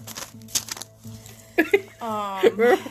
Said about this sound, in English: I'll write it down on a piece of paper.